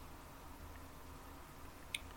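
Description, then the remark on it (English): A single drop of water falls from a cave chamber's ceiling into a wide, shallow pool with a crisp, short plink near the end, over a quiet, low rumbling hush of cavern air. No one speaks. “Water drips from the ceiling in this chamber, collecting in a wide, shallow pool in the middle of the womb.”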